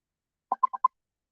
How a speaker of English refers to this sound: She works down in the buzzing bar and she's pinging me and I forgot to mute.